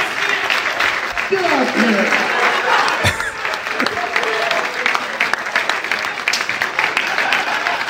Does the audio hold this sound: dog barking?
no